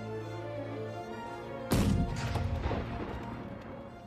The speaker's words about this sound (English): We could also see and hear a cannon demonstration going off from where we were standing on the ridge.